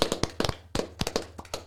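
A short burst of applause from a small group: about a dozen sharp, irregular handclaps overlapping unevenly for under two seconds, with no voices.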